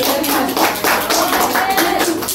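An audience applauds, a dense, steady patter of many hands clapping at an even level for a couple of seconds, with faint voices mixed in.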